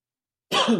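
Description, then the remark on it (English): A single abrupt cough bursts out after a moment of silence, short and breathy with a rough, throaty edge; no one speaks. “Sorry, I'm coughing.”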